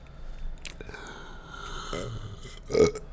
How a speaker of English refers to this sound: I just needed to burp very deeply. I understand. I feel like it was more inside burp than it was outside it burp.